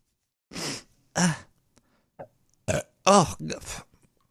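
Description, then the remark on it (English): Several loud burps from someone drinking malt liquor, in quick succession, some short and one longer and croaky, separated by brief pauses with faint rustling between them. “It's burping malt liquor and coughing up weed.”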